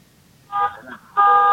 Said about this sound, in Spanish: Bueno, que apague esa bocina de ese carro que está dando lata, carnal.